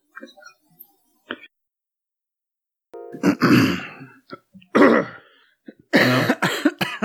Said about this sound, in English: Dueling coughs. Sorry, I'm just all phlegmy.